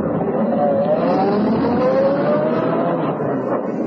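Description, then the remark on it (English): A luxurious limousine's engine, with an English chauffeur at the wheel, runs loud, its pitch climbing steadily as it accelerates, then easing slightly as the vehicle pulls away. No voices are heard. “Seated in the luxurious limousine, equipped with the correct English chauffeur, she became Lady Edith Bannon Murdoch.”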